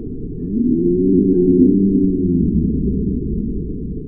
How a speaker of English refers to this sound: It sounds like a very large cow, no? That's not a cow. That is an African dwarf crocodile, the world's smallest living crocodile, at just under 2 meters long.